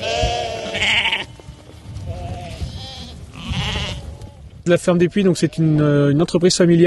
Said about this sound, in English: a sheep farmer, calls to a herd of his sheep at his family farm, Ferme du Puy, near the town of Dreux in France's Centre region.